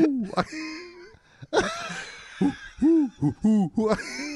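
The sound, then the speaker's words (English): A person vocally imitates an owl, producing several short, rounded hooting calls in a row, fairly loud, with a few breathy, laugh-like bursts mixed in. “What sound does an owl make?”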